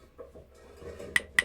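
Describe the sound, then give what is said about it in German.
A metal pot of soup that is boiling over clatters on a stovetop as it is taken off, two sharp ringing clanks near the end after a low rumbling background of kitchen noise. “Vorsicht, Regina! Die Suppe kocht doch über. Nimm den Topf runter.”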